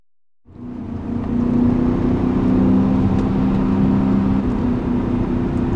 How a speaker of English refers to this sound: Oh, it's so good. It's so, so good. That engine, the engine note alone, I could fall asleep to this engine note. It's so smooth and beautiful.